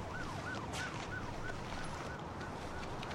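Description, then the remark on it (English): An emergency siren yelps in quick repeating rises and falls, roughly twice a second, above a steady, dense rumble of traffic and street noise in a hospital ambulance bay. “Abby and Carter are in the ambulance bay.”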